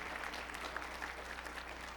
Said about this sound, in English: They were married 2 weeks ago, right? 2 weeks ago. And they're just back from their honeymoon in the house of the Lord. Let's give them a nice big round of applause.